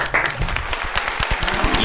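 A few hosts clap briskly for about two seconds, the claps quick and uneven, with some vocal noise mixed in.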